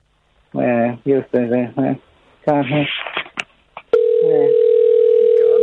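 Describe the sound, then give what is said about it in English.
A person talks for a few seconds, then a loud, steady telephone ringing tone on an outgoing call to the CIA starts and holds to the end, with a brief murmur of voice over it. “Why don't we give the CIA a quick call?”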